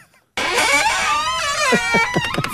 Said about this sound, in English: Oh, and the very terrifying door opening.